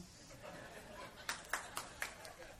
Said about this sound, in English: Man, you can clap, give God some praise.